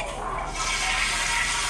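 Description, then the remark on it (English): A toilet flushes, a steady, loud rush of swirling water that swells slightly and fills the short moment without any voices over it. “Straight flushed.”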